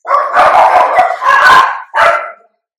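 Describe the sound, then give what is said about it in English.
Several dogs bark loudly in quick, overlapping bursts, then a final short volley before it falls silent. No one speaks. “What are they barking at?”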